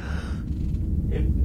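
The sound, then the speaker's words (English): A single yawn, a drawn-out breathy exhale with a brief airy rise near the end, over a steady low background rumble. No speech. “I just yawned.”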